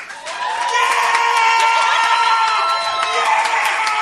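An audience votes by applause for the winner of a debate, clapping and cheering loudly and steadily, with sharp claps throughout and several high-pitched whoops and shouts rising above the din.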